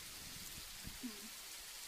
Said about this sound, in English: and it does sound in stereo, doesn't it? Sounds like you're sitting out in the rain, doesn't it? Well, your recorder had. Records in stereo. But it didn't sound in stereo. I made it be stereo.